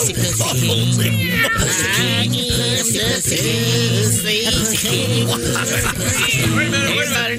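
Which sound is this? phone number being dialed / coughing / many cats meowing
many cats meowing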